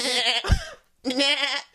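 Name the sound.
person imitating goat bleating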